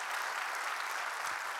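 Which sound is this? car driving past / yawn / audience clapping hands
audience clapping hands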